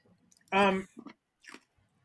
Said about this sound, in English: Let's go ahead and chew that ice. Let's get into it. Yeah. I mean, oh God, that ice is so delicious. I can't eat ice.